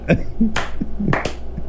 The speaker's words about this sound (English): There you go. Clapping from the peanut gallery.